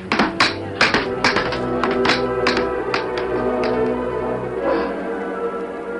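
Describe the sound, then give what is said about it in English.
Convicts hammering hard on a rough wooden box in a prison: about ten sharp, uneven knocks, clustered in the first half and thinning out later, over a steady tonal hum that carries through the whole stretch. “Now you hammer harder and listen to this.”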